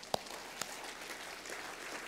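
Soft audience clapping, a steady patter of many hands with a couple of sharper claps standing out near the start, fairly faint throughout and with no voices over it.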